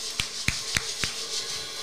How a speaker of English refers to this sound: Let's put a hand clap on that. Thank you guys for your participation with that one.